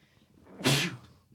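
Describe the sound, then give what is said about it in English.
A single sharp, loud sneeze bursts out, preceded by a brief quiet intake and followed by near silence. “Funny thing is, I'm not going to cut the sneeze out,”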